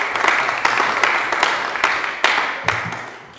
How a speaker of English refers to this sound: Can we just give another special round of applause?